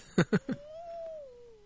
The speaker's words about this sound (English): Some kind of dumb bird.